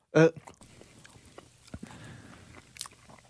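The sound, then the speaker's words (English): A sharp, loud bite at the start gives way to soft chewing of a man's mouthful of hot dog in a bun, about half the hot dog taken at once, with faint wet smacks and clicks continuing quietly. “I don't think you chewed that nearly enough for when you swallowed it.”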